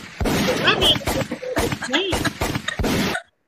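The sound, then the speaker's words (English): A string of sharp, booming gunshot effects, about five blasts at an uneven rhythm, fired over a voice making wordless vocal sounds, with the bangs loud and punchy before an abrupt stop. “Where's the gunshot for that?”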